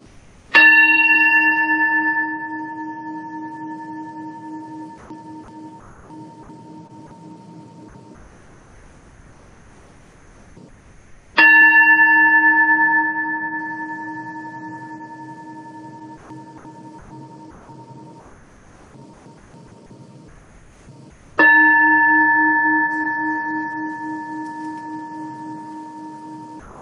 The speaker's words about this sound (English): And now I invite you to close your eyes, take a deep breath, and hear the sounding of the bell as it brings us together in worship.